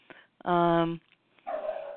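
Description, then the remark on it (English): A dog barks in the background, a loud, drawn-out bark followed shortly by a rougher, noisier second bark, both clear. “You hear my dog barking in the background?”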